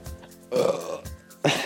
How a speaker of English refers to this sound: I got a burp.